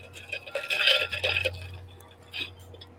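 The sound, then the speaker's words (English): Ice cubes clink and rattle against the side of a glass of ice water in a quick jangling burst, then settle before one more brief clink. No one speaks. “I'm back. I got my ice water.”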